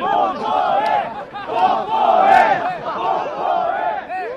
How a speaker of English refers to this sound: Back at Yeouido Park, the crowd shouts kiss at a young man and woman who seem to have hit it off.